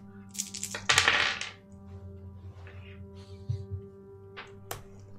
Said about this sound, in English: I'll just finish making some dice rolls here.